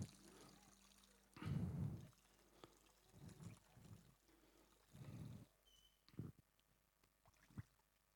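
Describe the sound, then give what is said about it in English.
Water is poured into a sponge in a few short, splashy bursts, then a couple of sharp drips fall from it, soft with quiet pauses between them and no voices. “this $2.99 sponge but sponge nonetheless can hold a whole heap of water”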